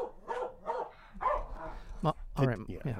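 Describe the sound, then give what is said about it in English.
A dog, Mahler, barks several times in quick succession, sharp yips set a little back from the microphone, mixed in with people talking over it during a KUCI 88.9 FM radio broadcast in Irvine, California. “Mahler, the fake news dog, is barking in the background.”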